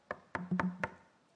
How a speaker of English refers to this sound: And so he knocks once. And you hear the knock, and then he knocks again because you might be doing something and you're not able to get to the door.